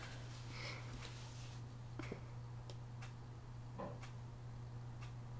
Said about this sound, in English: I really hope the fucking tick of the clock isn't in this entire episode. It shouldn't pick up.